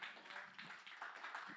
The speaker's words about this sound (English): Everyone give a hand clap for Jesus getting us here in one piece.